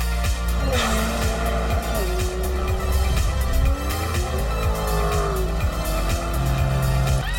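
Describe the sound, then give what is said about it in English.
A Toyota Prius accelerates hard, its engine roaring steadily while tires squeal in long, wavering screeches that rise and fall throughout. “It's a Prius that rips.”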